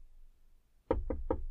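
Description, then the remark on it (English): Three firm knocks on the wooden door of a hut, evenly spaced, following a moment of near silence with a low background rumble. “You hear a knock on the door of this hut.”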